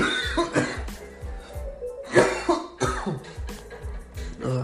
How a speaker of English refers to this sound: I'm sorry, you guys. You guys can hear me coughing and stuff. I don't know what's going on in this hotel room.